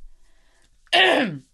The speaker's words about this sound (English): I coughed not into the mic that time, so I got you guys.